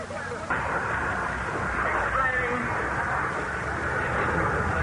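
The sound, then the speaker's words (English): A small portable generator near a truck drones steadily and loudly, supplying power after the mains power was cut off, a continuous rumbling engine hum with no breaks, while indistinct voices murmur faintly in the background. “The power seems to be coming from a little portable generator near the truck.”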